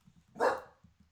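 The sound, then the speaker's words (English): A single bark from a dog named Red rings out, sharp and fairly short, moderately quiet, over a soft low rhythmic thumping in the background. “Do you hear Red barking?”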